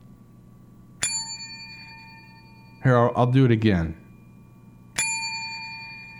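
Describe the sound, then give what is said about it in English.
A dog named Butch rings a bright bell twice to be let outside, about four seconds apart, each strike sustaining a long shimmering tone. Between the two rings a person speaks briefly. “That's Butch's bell.”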